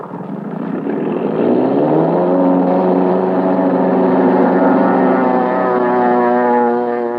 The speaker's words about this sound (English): And so, into the night roars a plane piloted by a lone man upon whose shoulders rests the fate of his country.